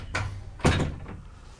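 A door swings shut with a soft initial bump followed by a louder, solid thud and brief rattle, set against a quiet hum with no talking.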